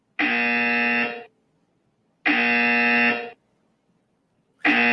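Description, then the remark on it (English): A harsh, loud game show buzzer blares three times in a steady rhythm, each blast about a second long with short silent gaps between, the third cut off at the end. “Yeah, that's a three buzzer.”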